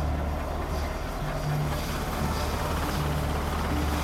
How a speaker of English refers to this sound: The chopper's landing.